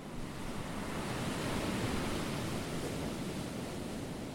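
A steady, hissing wash of water noise, broad and even, swelling slightly in the middle; ambience on board a boat with no one speaking.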